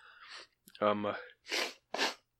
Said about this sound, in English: But I keep sniffing it in the mic. I'm trying to stop, but I'm so sorry.